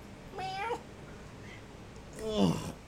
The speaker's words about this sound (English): Can you guys hear that? Could you guys just hear that meow all of a sudden out of nowhere?